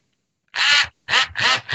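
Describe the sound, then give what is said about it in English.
A hammer drill in hammer mode pounds its drill bit into concrete to drill a hole, in four short, loud bursts, each a harsh buzzing rattle with a nasal, almost quacking tone, separated by brief pauses. No one speaks. “So you turn it to hammer, and it actually, when you put the drill bit in there, it will actually it pounds it.”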